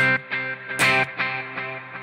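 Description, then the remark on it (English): A sustained, buzzy electric tone run through the echo setting of an effects pedal, with its time control being adjusted, repeats in evenly spaced delay echoes, roughly two or three per second, with one loud bright burst before the repeats continue at a steady level. No voices. “Okay, next up is echo. So this ought to sound more like a delay, I guess.”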